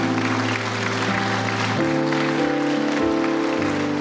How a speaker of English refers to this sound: So I want you to do something for me, because the musicians are always the people, the praise team, who get the least appreciation. I want you to give them a roundy amen and clap for them.